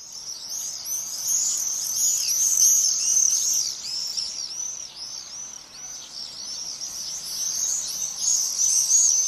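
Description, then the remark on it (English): A flock of birds screeches and calls continuously overhead, shrill high-pitched cries overlapping and rising and falling in waves, fairly loud, with no voices. “You may well have heard some of the screeching and calling in streets near you recently.”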